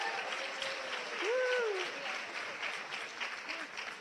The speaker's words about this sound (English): All we've given them so far is a very depressing conversation, and they're still applauding, so that's good.